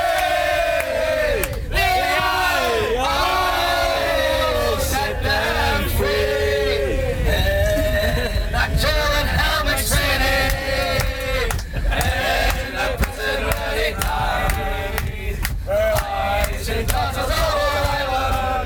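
A big crowd of football supporters sings a chant in unison, loud and unbroken, their massed voices rising and falling through a repeating, rhythmic melody from start to finish.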